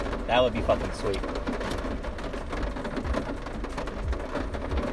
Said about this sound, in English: This rain, though. It is intense.